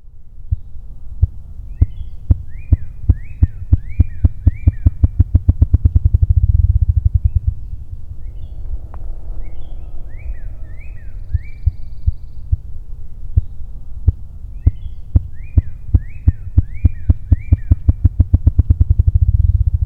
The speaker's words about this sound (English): Unlike any bird I've featured so far in the series, the ruffed grouse has a sound that is made entirely by its wings. This low sound, known as drumming, marks the territory of a male grouse.